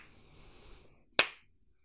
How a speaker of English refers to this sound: and I had to give him this little clap. Yeah. And I just went like this.